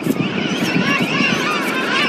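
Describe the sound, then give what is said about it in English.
A king penguin adult's long, wavering trumpet call, locating its chick, rings out over a dense chorus of overlapping calls from a busy king penguin rookery on the beach at Green Gorge, Macquarie Island, steady and loud throughout. “That long trumpety note that you can hear is the sound of a king penguin adult locating its chick amongst the rookery.”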